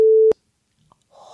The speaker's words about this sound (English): It's in all the headlines. I didn't spoil anything. I'm going to have to beep that out.